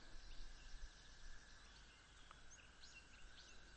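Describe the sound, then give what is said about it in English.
A toad's steady, unbroken trill hums on in the background, fairly faint, with soft outdoor ambience and a few scattered bird chirps around it. “Or a toad singing, which is what's happening right now.”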